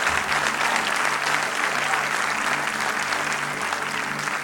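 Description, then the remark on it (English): An audience at a church service gives God a clap offering, a dense, continuous wash of clapping hands at even loudness throughout, with a faint low hum underneath and no voices standing out. “Can we give God a clap offering?”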